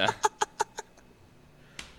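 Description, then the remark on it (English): A burst of rhythmic laughter, five quick pulses fading in strength, followed after a short pause by one sharp, fairly soft hand clap. “Clap it in. One more time.”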